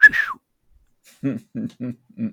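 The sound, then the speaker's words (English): A cartoonish call of a massive vulture: a shrill, falling squawk, a short pause, then four low, throaty honks spaced in a steady rhythm. “And since you said the vulture, guess what happens? Yep, cue the bird.”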